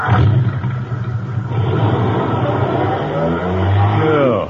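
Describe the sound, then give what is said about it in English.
A loud car engine rumbles and roars steadily, with low harmonic bands that rise in pitch toward the end as it revs up. “Rev it up.”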